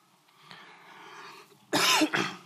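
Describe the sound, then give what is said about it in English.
After a moment of quiet, a speaker giving a talk gives two loud, harsh coughs in quick succession, the second slightly shorter, with a rough throat-clearing edge. “I hope you'll forgive me for coughing and hacking while I'm up here from time to time.”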